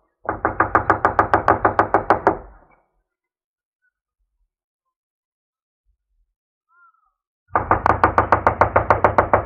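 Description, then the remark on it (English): Two bursts of loud, rapid knocking on the back door of a run-down, unoccupied house, each a quick run of sharp raps lasting a couple of seconds, separated by a long silent pause with no answer. “I'll knock.”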